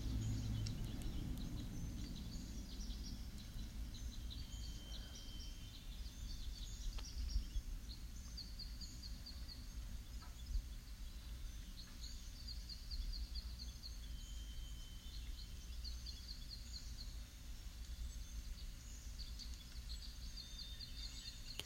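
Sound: birds singing and chirping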